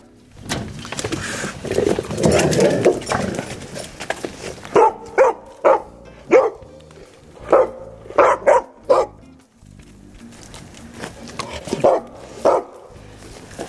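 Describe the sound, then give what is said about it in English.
Labrador dogs bark in a run of sharp, loud barks, some in quick pairs, after a few seconds of lower rustling noise, then a few softer barks near the end. “Go watch the Labradors.”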